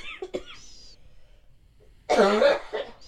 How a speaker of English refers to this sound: Pause. Cough break. I'm so sorry. That one hurt really bad.